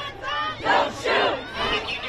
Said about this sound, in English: Wright was shot and killed by police in Brooklyn Center, Minnesota, protesters flooded the streets in what's become a sad, angry, and familiar ritual. They chanted, they marched, they yelled at the cops, they held up signs reading Black Lives Matter.